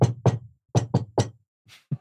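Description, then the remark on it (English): A rhythmic secret knock on a door, sharp raps in a patterned sequence: two quick knocks, a pause, three more, then a faint tap and a final quick pair. “And then I do the knock at the door.”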